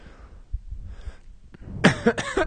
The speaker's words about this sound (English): I'm gonna cough.